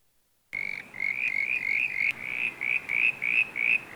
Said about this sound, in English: And and just briefly, we've got the brown tree frog. That's a different one. He climbs up your windows when it's raining. Got a sound for him.